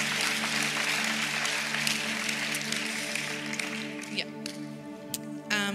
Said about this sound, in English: Can we give her a clap as well?